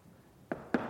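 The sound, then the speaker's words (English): Two quick, solid knocks on what sounds like a door, fairly loud, spaced about a quarter second apart against a quiet background. “He's knocking. He's not going to force open the door.”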